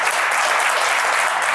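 Steady applause from an audience for a guest, a dense, continuous patter of many hands clapping at an even loudness for the whole moment, with no voices standing out.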